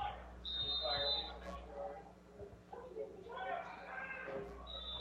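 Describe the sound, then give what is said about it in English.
A referee's whistle at an American football game featuring the Hornets blows a sharp, high, steady blast lasting about a second, signalling ready to play, then a second brief blast near the end, both cutting over ongoing talking and crowd murmur. “And we've already got a few other whistles.”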